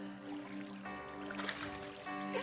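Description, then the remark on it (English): Water splashes and sloshes as a person is dunked and lifted during a Christian baptism by immersion, with a couple of brief louder surges over a steady tonal hum in the background. “Okay, so plug your nose. Due to your confession of faith in the Lord Jesus Christ, I baptize you, set you free, and unlock new levels over you by water and fire in the name of the Father, the Son, and the Holy Spirit, Yeshua.”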